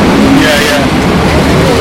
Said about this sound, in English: Why is the truck taking so long? It's unloading. It's got to unload everything.